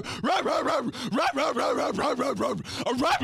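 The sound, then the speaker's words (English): A human voice imitates a dog barking in a rapid, unbroken string of loud yapping barks lasting a few seconds, with no other sounds around it. “There's a dog yelling at me from inside of an apartment while I was parking my car in a parking lot.”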